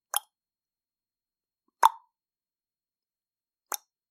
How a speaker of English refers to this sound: Wooden leg, hitting the pavement.